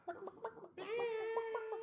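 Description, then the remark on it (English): About 50 chickens running amok inside a living room cluck in short rhythmic bursts, then a louder, sustained squawking call rises and holds with harmonic overtones, the birds busy, with no voices. “We see their living room, and there's 50 chickens running amok inside.”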